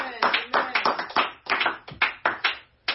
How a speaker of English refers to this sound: Somebody clap their hands like that.